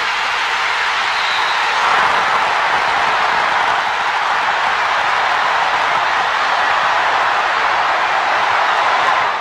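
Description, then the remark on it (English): A packed college basketball arena crowd roars after Christian Laettner's buzzer-beater shot against Kentucky, a dense, loud wall of cheering that holds steady for about nine seconds with no one speaking over it. “I mean, Vern Lundquist just let the crowd take over, and that's a conscious decision.”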